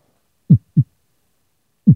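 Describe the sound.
A voice mimics a heartbeat with the throat held over the microphone: three low, thumping pulses, a quick lub-dub pair followed by a pause and a single beat, with no talking.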